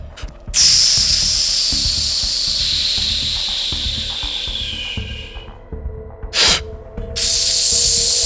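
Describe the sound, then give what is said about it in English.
A voice imitates hissing breath: a long, loud exhale hiss, a short sharp puff, then another sustained hiss, in a repeating rhythm like a steam engine. “You can hear breathing. You hear like a...”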